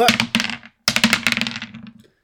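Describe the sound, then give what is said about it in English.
Dice are rolled for the next round, clattering across a hard surface in two quick bursts of rattling clicks separated by a short pause, the second tumbling longer before settling into silence. “All right, well, let's grab our dice and roll for the next round.”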